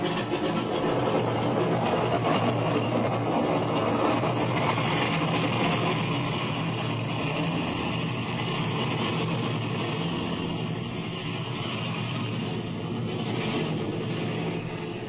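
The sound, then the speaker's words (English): Airplane engines roar steadily as a plane takes off, a loud, dense rumble that holds nearly constant with only a slight easing toward the end, with no voices. “Look, he's taxiing over this way. Sure enough. I think this bus is okay, Jimmy. You take off and I'll follow you.”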